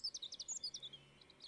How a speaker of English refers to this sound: It looks and sounds just like any other morning. All is quiet and still. The birds are singing in the treetops.